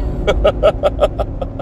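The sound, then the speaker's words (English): Inside a vehicle's cab while it is being driven: a steady low engine rumble runs throughout while a quick series of about nine sharp, evenly spaced electronic beeps sounds. No one speaks. “You guys get to hear what's going on in cab”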